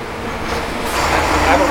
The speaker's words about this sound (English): It's been really quiet most of the day. Why is it at 11:30 all of a sudden these trucks are riding by?